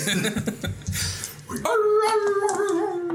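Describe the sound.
A few rough, scrappy yips and noisy barks give way to a long, loud, wavering dog-like howl that slowly sinks in pitch, drawn out to the end.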